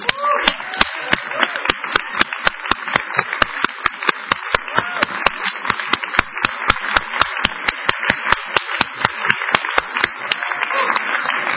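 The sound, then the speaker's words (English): A crowd claps in a steady, quick rhythm for about eleven seconds, sharp even beats over a constant wash of hands, staying loud from start to finish. “if you had any involvement yesterday, can you please stand and can we give you a round of applause, please?”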